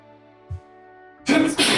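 sneeze

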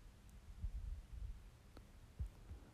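heartbeat

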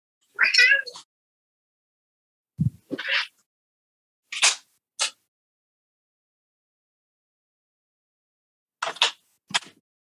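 cat meowing

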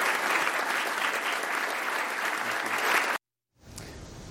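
applause

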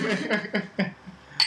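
glasses clinking

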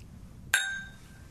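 glasses clinking

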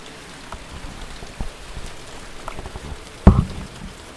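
rain falling

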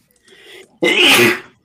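sneeze

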